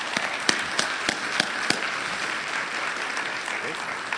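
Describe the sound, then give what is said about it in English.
A church audience gives a warm round of applause for people coming up to share their stories, a dense, even wash of clapping with a few sharper individual claps standing out early on, holding at a moderate level throughout. “So could you give a warm round of applause?”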